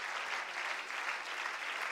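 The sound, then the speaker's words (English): A crowd at Heaven View United Pentecostal Church applauds its guests with steady, dense hand clapping that holds an even level for about two seconds, a continuous crackling wash of many hands with no voices above it. “Can we give all of our guests a wonderful hand clap?”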